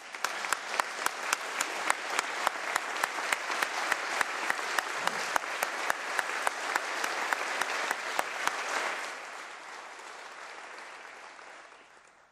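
An audience applauds steadily for about nine seconds, dense clapping with a few sharp, louder claps standing out, before the applause thins and fades away; the applause honours a student for her hard work and commitment.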